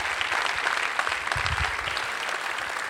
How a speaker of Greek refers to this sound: Καλησπέρα και καλώς σας βρίσκουμε στην υπέροχη The Max, των Village Cinema, στο The Mall Athens, που αλήθεια τη γεμίσαμε. Μπράβο σας! Τώρα το χειροκρότημα στους εαυτούς σας.